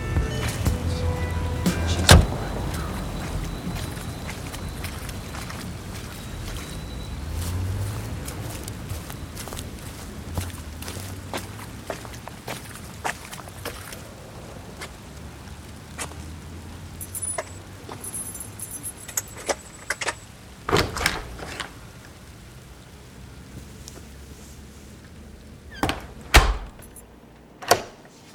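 A car door thuds shut, then footsteps walk steadily through steady rain, keys jangle up close, and a door clatters open near the end. No one speaks.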